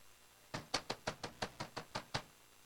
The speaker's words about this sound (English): And it's getting, the water's coming down harder and harder. And they begin to knock on the door of the ark.